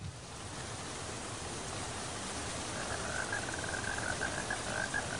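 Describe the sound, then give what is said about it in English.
Steady, dense hiss of rain falling without pause, with a high, wavering frog-like trill joining partway through and continuing to the end. No one speaks. “I told you, it's raining.”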